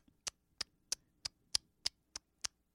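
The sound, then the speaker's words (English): A voice imitates the ticking of the Times Square news ticker as each letter hits the edge of the machine: about nine sharp, dry clicks in a steady, quick rhythm, fairly quiet, with no talking in between. “And I found out why they call it a news ticker is because it ticks.”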